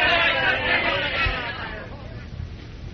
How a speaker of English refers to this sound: Oh, it really started something there with that speech. He had most of the crowd with him, but then some hecklers got to work on him. They called him un-American.